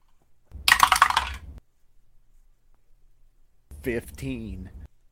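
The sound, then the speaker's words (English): A short burst of dice clattering and rattling across a table as players roll for initiative, fairly loud, lasting about a second, followed by a pause and then a brief spoken remark. “So, can my co-conspirators please roll for initiative?”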